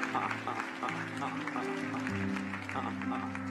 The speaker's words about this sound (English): We're going to clap for you.